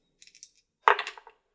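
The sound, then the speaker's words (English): A few light clicks, then a sharp clatter as dice are rolled and tumble and rattle across a table before settling, with no voices; the dice come up 3 on a fight roll. “And I also got with a plus one, I rolled 3 on the dice, plus I got a 5.”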